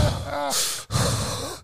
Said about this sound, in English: You gotta be over here breathing in the microphone like I'm Jason stalking somebody.